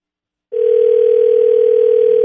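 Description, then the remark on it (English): After a brief silence, a steady, loud ringback tone comes through a phone line and holds unbroken to the end, the thin, narrow sound of an outgoing call ringing as a randomly picked phone number from a list of entrants is called. No one speaks. “All right, it's ringing.”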